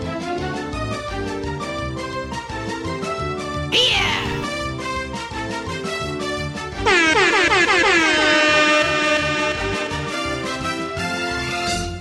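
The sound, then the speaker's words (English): Loud, brassy air horn blasts sound in a rapid repeating pattern, with a brief harsher burst partway through and then a long, even louder blaring stretch before it eases slightly. “All right, so now I love the air horn.”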